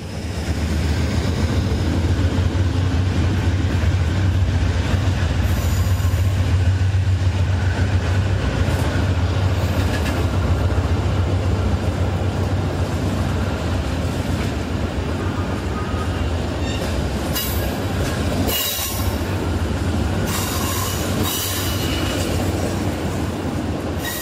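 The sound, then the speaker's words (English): A train rolls steadily through a very large station with a big train shed and five platforms, with a heavy low rumble and rhythmic clacking of wheels, plus brief squeals and hiss, all reverberating inside the shed. No voices. “This is one of the largest stations I've been into. Not only is it a big train shed, but also it has five platforms.”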